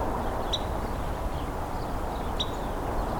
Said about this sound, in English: So this is the Carolina wren making these peep sounds.